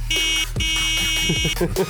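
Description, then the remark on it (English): A car horn blares in two long, steady honks separated by a brief break, loud and buzzy, followed by someone starting to talk as the second blast fades. “But it is also brought to you by the Lysol Disinfectant Spray Protest Car Horn.”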